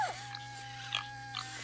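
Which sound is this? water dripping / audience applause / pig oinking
pig oinking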